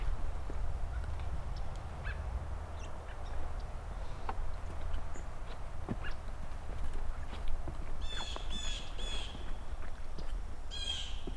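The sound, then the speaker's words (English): A blue jay gives several harsh, buzzy calls in quick succession near the end, over a steady low outdoor rumble, with faint chirps of other birds scattered throughout. “Blue jay.”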